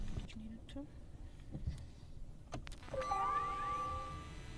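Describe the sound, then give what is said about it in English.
An electric car with an electric motor is switched off and back on: a few sharp clicks and thumps, then rising electronic tones and a steady whine sweeping upward as systems come alive, moderately loud. “I actually did, but we'll switch it off and put it back on so you can hear for yourself.”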